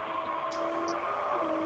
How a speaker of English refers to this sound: what's that going on your phone? It sounds like there's some kind of, I don't know, something going on there. Vacuum. Sorry. It's hoovering, is it? It's vacuum cleaner in the background, yeah.